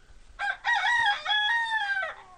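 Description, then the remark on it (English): A rooster crows once, a loud cock-a-doodle-doo lasting about two seconds with a brief break after the first note before the long, drawn-out call trails off. No one speaks. “Now I gotta look up Crazy Chicken to see what kind of breed it is.”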